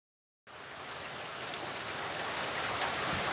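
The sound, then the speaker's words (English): After a brief moment of silence, a steady wash of rain comes in, a dense, hissing downpour that holds fairly constant throughout, with no voices. “As if on demand, the deluge of rain slowed to a light drizzle as Detective H2O pulled to a stop in his rusty blue Ford.”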